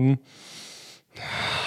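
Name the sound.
breathing into the microphone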